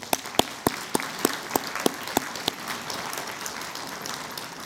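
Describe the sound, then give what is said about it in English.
A church audience applauds the students who went on a trip, with a few loud, evenly spaced claps standing out over the softer mass of clapping, which carries on for a few seconds. No one speaks. “And then can we also give a round of applause for all the other students and everyone else who went on the trip?”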